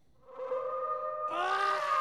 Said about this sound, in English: what sound effect do I want to go out on here? Spooky wolf. Spooky wolf. How about, like, spooky wolf and man yelling?